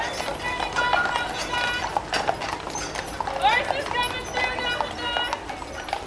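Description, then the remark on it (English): Horse hooves clip-clop steadily on a hard street on Mackinac Island in Lake Huron, where cars are banned and people get around by bike and horse, in a brisk repeating rhythm, with indistinct voices and other outdoor bustle in the background. “Cars have been banned there for decades, and people use bikes and horses to get around.”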